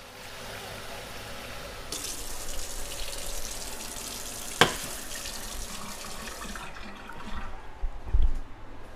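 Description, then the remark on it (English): Water in a pot heating toward a boil on a stove gives a steady rushing hiss that swells after a couple of seconds, with a sharp clink midway, then fades and ends in a low knock. “Oh, you want to hear the water?”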